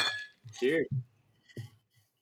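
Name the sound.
glasses clinking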